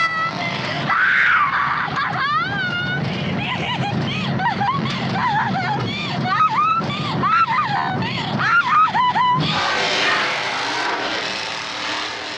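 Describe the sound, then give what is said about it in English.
A woman screams again and again in long, wavering, shrill cries over a low rumble in a film scene, until Leatherface starts up a chainsaw whose loud, harsh motor roar cuts in and drowns out her screams. “all this character has left to let somebody know that she's desperately in need and dying is her scream.”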